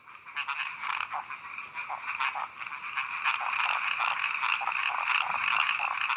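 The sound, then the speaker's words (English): A dense chorus of male frogs recorded by researchers, one male starting the call and the others copying him almost immediately: overlapping repetitive croaks and chirps forming a steady, continuous din with brief high peeps on top, no voices present. “One little male will start the call. This is an actual frog the researchers recorded, by the way.”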